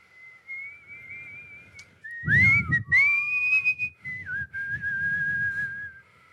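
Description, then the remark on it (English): A thin, breathy whistle from a person trying hard to whistle, with nothing much coming out, wavers unsteadily in pitch for several seconds, with rushes of air noise underneath as the whistler strains; no one speaks. “And she's like trying really hard to whistle, but like nothing's coming out. That's what my whistle sounds like.”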